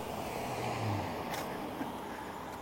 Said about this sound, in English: Here comes a car.